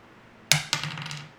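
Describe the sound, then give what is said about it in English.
A ten-sided die (d10), rolled for hit points in a tabletop game, tumbles onto a hard surface: two sharp clacks in quick succession, followed by a short, fading rattle as it settles. No one speaks. “So you can either roll the d10 twice, or you can take 6 and 6, and then add your constitution modifier twice.”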